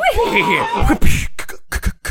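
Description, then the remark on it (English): A loud, wavering horse whinny slides downward in pitch for about a second, followed by a quick series of breathy, clattering bursts. “I'm riding over into spoiler town. Is that the sound?”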